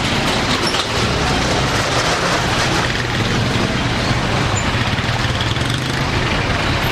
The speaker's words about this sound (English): since the situation has been worsening, potholes here have become bigger, making it almost impossible for drivers to maneuver the roads under the interchange. This results in huge traffic jam around the area.